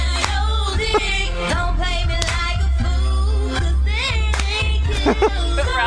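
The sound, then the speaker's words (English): Rhythmic hand clapping in a soul-clap style, sharp, close claps landing roughly once a second over a dense, continuous bed of tonal, singing-like sound that keeps going underneath. “There you go, the soul clap.”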